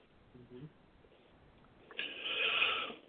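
A single raspy, snore-like breath about a second long rises out of quiet room noise, close and moderately loud, after a faint brief vocal sound earlier on.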